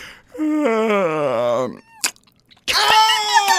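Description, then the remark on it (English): A loud, exaggerated vocal yawn, imitating someone waking up, stretches out with a wavering, falling pitch. After a short pause and a sharp click, another strained, drawn-out vocal sound follows. “You got to do it again. One do more it time? With the whole yawn.”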